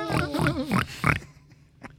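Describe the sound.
A woman imitates a pig with a run of loud, nasal grunting oinks over about a second, followed by a couple of fainter snorts trailing off.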